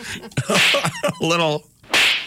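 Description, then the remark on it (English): A voice imitates a slap with two loud, hissing whip-like bursts, separated by a short voiced vocal sound in between, prominent. “slap. You're like, Right.”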